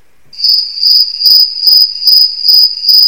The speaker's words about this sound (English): The man sits in his favorite lounger chair. He turns off the TV and listens. Crickets.